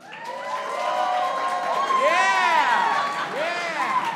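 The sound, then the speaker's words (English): An audience bursts into cheering and whooping to vote for a would-you-rather option about unlimited McDonald's, many voices rising and falling in high-pitched shouts over a steady wash of clapping, loud and sustained for about four seconds. “If you would rather have unlimited McDonald's but have to summon a portal in a bathroom every single time, make some round of applause.”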